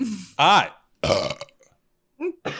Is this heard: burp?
yes